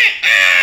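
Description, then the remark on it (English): A person gives a loud, harsh, nasal squawk imitating a crow's caw: a short cry that dips for an instant, then rises again and holds strained to the end. “You're a crow? Are you the crow in Haunted Mansion?”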